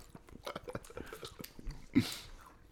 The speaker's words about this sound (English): I'll record my Thanksgiving dinner. We'll post it as an episode. It's so much chewing.